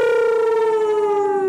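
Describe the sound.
People in a car on the way back from a Toronto Wolfpack rugby league game howl like wolves in one loud, sustained, siren-like wail that holds a steady pitch and slowly slides lower over about a second and a half.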